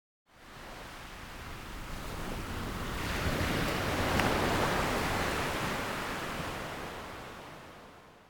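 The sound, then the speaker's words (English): Steady ocean surf washing onto a sunny beach in Southern California, a broad hissing roar that swells gradually toward the middle and eases off again, with no voices present. “Imagine yourself lounging on a sunny beach in Southern California.”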